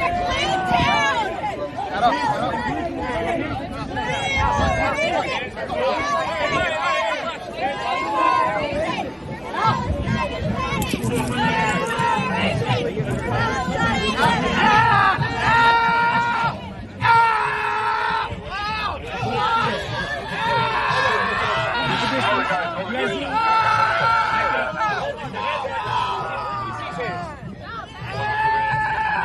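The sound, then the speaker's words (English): A man yells and screams loudly over a dense, noisy crowd at a pro-Palestine street protest, his strained voice rising and breaking above continuous chanting and chatter. “Do you know why he's screaming?”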